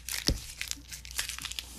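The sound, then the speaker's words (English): Paper crinkles and rustles in quick, irregular bursts as a cat plays with it on a desk, with a soft thump near the start as it's batted about. No one speaks. “My cat's playing with paper on my desk, so let me just get this right here.”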